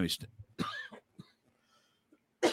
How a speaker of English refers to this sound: I'm going to cough again. Hold on one second here.